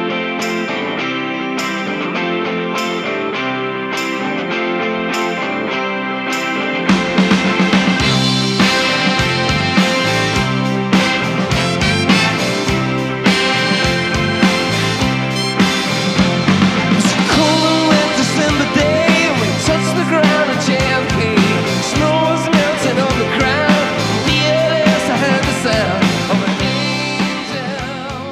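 A rock song plays from a vinyl record, leading off side three, record two of an album, opening with a sparse rhythmic intro before the full band with horns and guitars surges in, loud and steady throughout with no talking over it.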